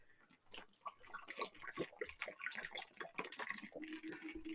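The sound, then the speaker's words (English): Wet mouth sounds of someone sipping and swallowing water, with small slurps and liquid clicks in an irregular rhythm, no talking. “I need a sip of water here.”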